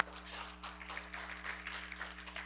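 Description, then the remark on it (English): Audience applause at a morning church service: many hands clapping in a dense, steady patter that holds evenly throughout, fairly soft overall, with a low steady hum underneath and no one speaking. “Would you just give Whitney a round of applause?”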